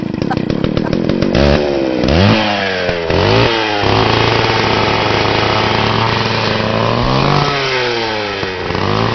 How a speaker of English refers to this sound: And finally, German Chancellor Angela Merkel secretly recorded testing out a chainsaw before chopping a tree down in bondage kit.